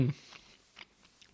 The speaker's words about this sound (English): I'm so sorry I'm munching mid-pod. Actually, we made a mistake here because I've eaten at the same time you've eaten.